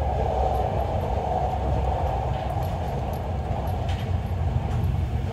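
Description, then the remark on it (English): A passenger train in Serbia rolls steadily along the railway at around 100 kilometres an hour, a continuous, fairly loud low rumble and rattle of wheels on track with faint clicks above it, and no voices. “And at this point, you know, the speeds have picked up, but it was still, still quite a slow journey.”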